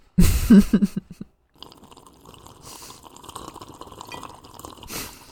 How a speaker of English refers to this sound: I was trying to harmonize my sip. Like, could I make a higher sip by going faster?